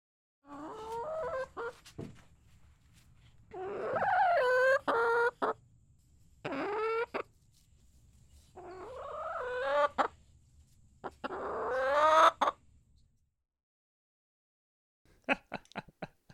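A hen clucks repeatedly while relaxing, in bursts of gurgling, throaty calls with short pauses between, clear, over a faint low background hum, ending with a few sharp clicks.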